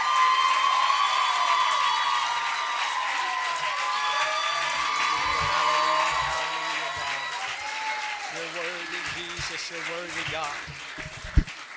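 An audience at an evening church service breaks into sustained applause and cheering as a preacher comes up to preach, a dense wash of clapping with whoops and shouts layered over it, steady throughout and ending with one sharp clap.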